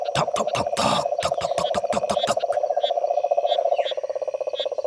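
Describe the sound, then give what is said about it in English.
A cane toad gives a long, steady trilling call, a rapid continuous purr that runs without a break, with a burst of sharp clicks and knocks over its first half. “And the cane toad goes tockety, tockety, tockety, tockety, tock, tock, tock, tock.”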